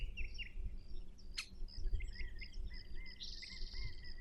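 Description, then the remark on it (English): Several birds chirp and trill in the woods, overlapping calls weaving through a steady outdoor hum, with one sharp burst and a longer buzzing trill near the end. “The songs of birds.”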